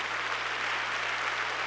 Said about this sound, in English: Clap your hands to the Lord today.